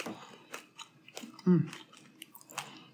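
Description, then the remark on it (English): Biting and chewing of a big, soft ginger molasses cookie with crisp, sugar-coated edges, with soft crunchy, wet mouth sounds repeating irregularly and a louder low muffled hum-like burst midway, no talking. “Why do I always take such a big bite?”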